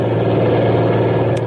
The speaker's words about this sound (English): There's a truck coming.